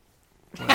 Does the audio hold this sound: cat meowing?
yes